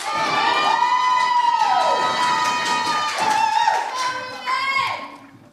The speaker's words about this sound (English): Keep that applause going for our second last poet of the round for the second time. Welcome back to the stage,